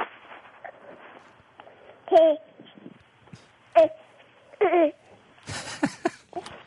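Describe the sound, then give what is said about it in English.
An 8-month-old baby girl babbles over a tinny phone line, giving three short, bright, pitch-sliding coos among quieter murmurs, followed by a brief burst of rustling noise near the end. “Yeah, put the baby on the phone.”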